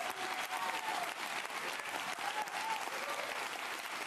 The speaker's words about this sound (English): Why is Yang clapping?